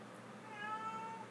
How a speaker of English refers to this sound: And you're in the background just looking at me while you're meowing at me. Don't look at me while you meow at me. Actually, where the hell are you?